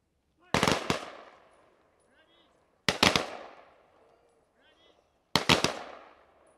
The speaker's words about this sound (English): And now I'd like to have Metro Vets. We will now have our rifle salute.